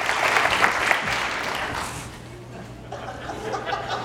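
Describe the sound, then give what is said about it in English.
An audience at a worship service claps together on the count of three in a dense burst of applause that is loud at first, then thins and fades, with scattered laughter and chatter mixed in and a low steady hum underneath. “I could stand up here and say, okay, on the count of three, everybody clap your hands, raise your hands.”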